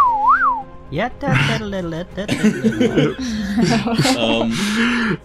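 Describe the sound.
A brief mouth-whistled slide-whistle tone glides upward and back down, clear, then gives way to several people chuckling and talking over each other.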